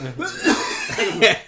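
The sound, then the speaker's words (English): A person coughs in a few harsh bursts that break out of laughter from laughing too much, with chuckling sounds running between the coughs. “When I laugh too much, I cough, dude.”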